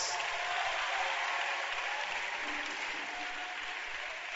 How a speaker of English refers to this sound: I've been in Lighthouse for 4 months now. Clap for Jesus.